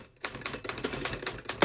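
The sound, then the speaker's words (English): An early mechanical typewriter clacking away in a quick, uneven rhythm of sharp key strikes, fairly loud, ending on a heavier thump. No voices. “The very early Remington machines actually look more like sewing machines than typewriters.”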